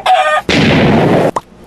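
A brief, loud chicken squawk is abruptly cut off by a harsh, crackling burst of noise lasting about a second, then a few short clipped sounds trail off.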